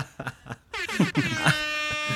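A loud, blaring air horn blast starts after a short pause and holds steady with bright, buzzing harmonics for over a second, following a few quiet muffled thumps at the beginning.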